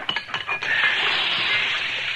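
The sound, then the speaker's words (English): A few sharp metallic clinks ring out as a horseshoe is shaped, then a loud, steady hiss takes over as the hot iron shoe is plunged into water to quench it and sizzles for the remaining couple of seconds. “Well, I haven't got this shoe shaped right now. I never will. Now, we'll quench it and see how it fits.”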